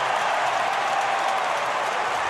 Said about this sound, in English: Foul committed to bring Boban in. Dinwiddie checks out. And the crowd goes banana for the 7-5.